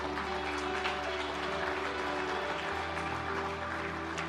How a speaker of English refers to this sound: We can clap for that, Mission Church.